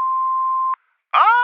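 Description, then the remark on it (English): A voicemail tone: one steady, mid-pitched electronic beep lasting under a second, then a brief silence before a voice starts in with a drawn-out sound. “message after the tone.”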